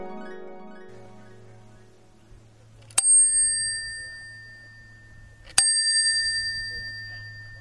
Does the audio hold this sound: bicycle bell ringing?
yes